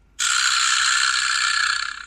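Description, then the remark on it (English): A vibraslap is struck once, giving a sharp onset followed by a bright, buzzy wooden rattle that sustains loudly for about two seconds, its rapid clatter slowly tapering off. No talking is heard. “I'm pretending that I'm hitting a vibra slap. That little noise. I actually have one, so I'll play it.”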